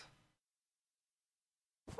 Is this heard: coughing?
no